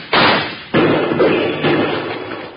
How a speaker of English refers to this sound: Well, if that's the case, Bill, let's shoot at those lizards some more and shake up Rocky's hearing again.